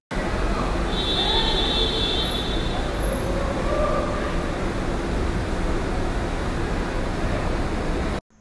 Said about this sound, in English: you unluckily land in Terminal B to find your Uber, Lyft, or car pickup home, you are led a quarter of a mile to a garage, which is an assault on your senses, with rows of traffic and activity at any hour of the day. This was 10 p.m. on a weeknight.